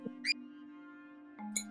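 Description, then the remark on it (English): Two short, high-pitched squeaks from Vera, a small pet animal, separated by over a second, heard faintly over a steady low electrical hum with no talking. “There's Vera squeaking away.”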